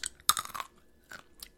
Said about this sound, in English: I need to stop eating these gross, stale-ass nuts.